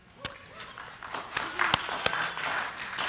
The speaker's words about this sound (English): Hopefully that level of applause doesn't communicate to you the depth with which people appreciated your sermon